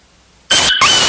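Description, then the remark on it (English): A dog barking sound effect played from a button blares in abruptly after a moment of silence: two loud, harsh, distorted bursts with a shrill squealing, yelping tone, almost without a break between them. “It's supposed to be a dog barking, but I think it's a dog getting his ass whooped.”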